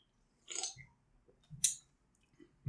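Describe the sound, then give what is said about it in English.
Sips from drink cans of a brand with a heavy metal skull on it: two short, breathy slurps about a second apart, each followed by soft low gulping thuds, then another gulp at the end, with no talking. “Yeah, let's take a sip of these bad boys.”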